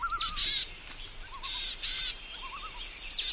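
Boreal Chickadee calls: several hoarse, buzzy notes in short bursts, interspersed with soft, wavering lower twitters, clear with no voices.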